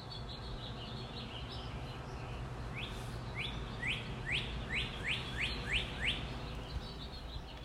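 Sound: birds chirping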